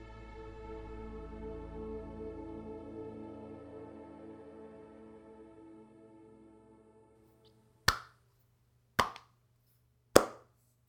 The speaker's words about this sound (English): Slow clap. Slow golf clap.